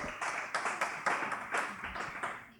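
Audience applause welcoming the next guest, from CrossFit Verve: a steady patter of many hands clapping at moderate loudness for a few seconds, with a bright, crackling texture and no voices.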